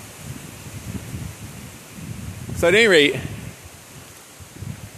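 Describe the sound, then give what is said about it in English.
Strong wind rushes through the leaves of overhead trees in a steady, fluttering hiss with low gusty rumbles, continuing throughout while a man briefly speaks over it. “Woo, it's windy. Wowzer. That's like the dangerous kind of windy. I'm going to be watching the trees above me.”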